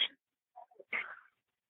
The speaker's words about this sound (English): I'm trying to control a dog.